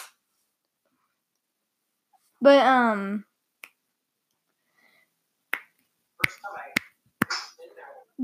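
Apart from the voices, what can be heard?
finger snapping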